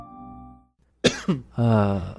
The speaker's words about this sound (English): Hey, we're going to have to get a cough button if you're going to keep doing that.